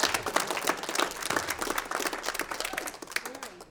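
An audience breaks into sustained applause, many hands clapping at once in a dense, steady wash of sharp claps with a few faint voices mixed in.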